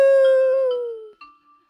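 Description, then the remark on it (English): A person imitates a dog howl with one loud, sustained vocal note that slowly slides down in pitch for about a second, followed by a faint, thin tone. “I'm still not super opposed to the howl at the end.”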